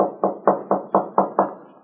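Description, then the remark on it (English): Seven firm knocks rap on a wooden room door in a steady, even rhythm, fairly loud, with no voices over them. “Well, this is Buddy's room. I know he's in. I didn't see him go out today. Well, there's no answer. Knock again”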